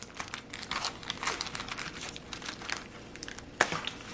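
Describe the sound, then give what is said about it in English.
Plastic packaging of a microwaved meal container, hot after about 3 minutes in the microwave, crinkles and crackles steadily as it is opened, with one sharper snap or peel near the end. No one speaks. “Let's open it up, see what this thing looks like.”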